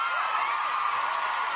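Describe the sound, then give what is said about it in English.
A dense, steady wash of crowd cheering and applause, loud and unbroken for under two seconds, with a hissy, roaring texture and no individual voices standing out. “Just roaring applause at home.”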